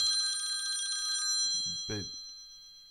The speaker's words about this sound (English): That's not my phone. That's your phone? Yeah. Should I answer it?